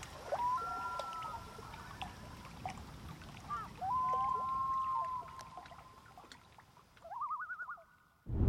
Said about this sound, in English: The lapping of a lake's gentle waves and the sirens of loons on the border of Canada and Minnesota, in an area known as the Boundary Waters.